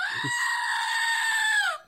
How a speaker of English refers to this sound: Here, maybe the screaming goat has an idea.